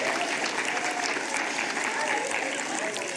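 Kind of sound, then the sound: crowd, audience applauding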